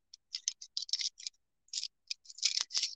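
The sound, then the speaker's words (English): Keys on a keychain holding many keys jingle and clink in quick, irregular bursts as someone searches for one key, bright, with a brief pause midway before a busier flurry of rattling at the end. No one speaks. “Well, I am struggling to find that key. I have a lot of keys on my keychain.”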